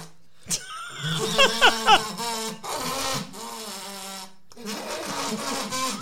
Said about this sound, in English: You have to doot into the kazoo. No, you don't blow into it. You doot. So I kind of hum. You got to doot. Just doot.